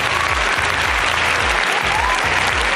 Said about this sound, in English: Oh, long applause.